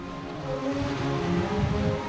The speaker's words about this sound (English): Down below, about 30 feet or so, the frigid water crashes up against the pier's concrete posts.